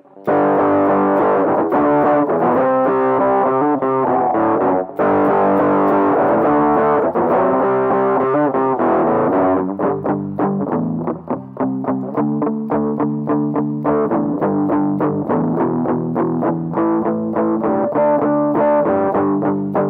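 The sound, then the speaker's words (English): An overdriven electric guitar plays crunchy, gritty chords with a classic overdrive tone, strummed in a steady, driving rhythm for the full stretch, with no voices over it. “Let's make something crunchy.”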